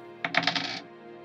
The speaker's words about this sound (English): When you roll 2 threat dice, the possible results range from 2 to 8. Right now, Aerys is being attacked by a falling tree. Let's go ahead and roll the threat dice to see what he's going to have to respond to.